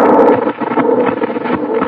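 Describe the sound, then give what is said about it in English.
Wind blows in a steady, loud rush, a dense hollow roar that swells and dips slightly without a break, with no voices over it. “Sure is windy.”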